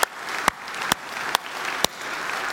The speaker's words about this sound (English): but could we just give a huge KPC applause to the deacons?